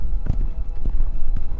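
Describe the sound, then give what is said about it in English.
Horse hooves clip-clop at a steady pace as a rider spurs the horse onward toward a monastery on the Blessed Isle, a few distinct thuds ringing out over a low rumbling background, moderately loud. “Several monks working in the fields looked up as he spurred his horse onwards towards the monastery.”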